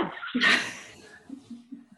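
A dog gives a single short bark in the background, then low, faint vocal murmurs trail off over the next second or so.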